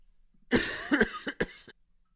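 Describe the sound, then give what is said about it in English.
A voice imitates a young child's hacking, phlegmy cough: a harsh burst followed by several quicker rasping coughs in an uneven rhythm, fairly loud, with no other talk. “Hacking cough, like. Yeah, that phlegmy cough.”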